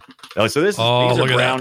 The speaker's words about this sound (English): And I had to pick up this thing right here. Well, I didn't have to, but I did. A mechanical keyboard. It is, Click it. Click it.